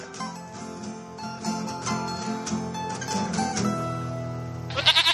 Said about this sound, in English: It's Two Goats.